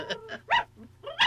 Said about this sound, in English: I can hear a dog barking too. It's Pom-Pom. I remember Pom-Pom.